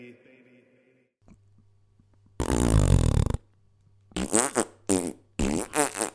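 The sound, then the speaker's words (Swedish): Fart sounds made as a joke: first one long, loud, raspy blast, then a quick run of four or five shorter sputtering bursts, with a faint low hum between them and no talking. “med de pruttskämten avslutar vi veckans avsnitt av Specialisterna podcast”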